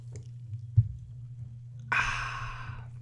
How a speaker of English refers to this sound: Let's take a sip of my strawberry mango sparkling water.